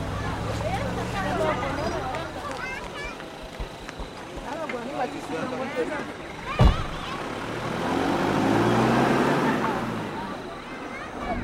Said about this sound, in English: 25 kilometres along the dirt tracks. It's a really uncomfortable journey, even just sitting in the back of a car